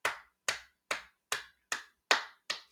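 Seven sharp hand claps in a slow, steady rhythm, evenly spaced and all at similar loudness, like one person applauding alone with no talking.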